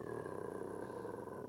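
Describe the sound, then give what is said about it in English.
A person's voice imitates a sleeping dog's low, rumbling growl: one steady, gravelly drone held for a second and a half, fairly loud, with no talking. “All of a sudden, she starts going with this low rumbling.”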